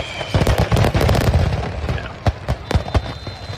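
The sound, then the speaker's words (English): A whole fireworks show goes off in about 30 seconds in broad daylight at 10 a.m. on a beach: a rapid, crackling barrage of loud overlapping bangs and booms, then thinning out into a few separate sharp blasts with rumbling tails. “The whole show went up in about 30 seconds.”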